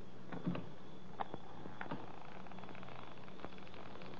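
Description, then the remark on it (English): The door of a country house creaks open slowly, quiet and drawn out, broken by a few soft mechanical clicks and groans over a low background hum. No one speaks. “I got a feeling nobody is going to open that door.”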